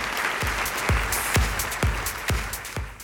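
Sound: audience applause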